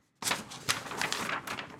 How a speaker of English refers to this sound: That was just me ruffling papers.